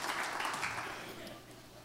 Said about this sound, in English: And everybody said amen. Give the Lord a great hand clap of praise and worship him as you're being seated this morning.